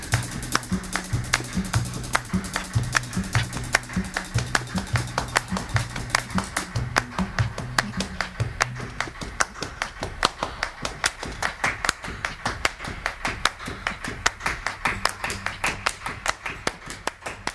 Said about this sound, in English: until she begins to clap